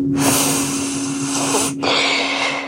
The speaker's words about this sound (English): give the first bowl a good long sniff.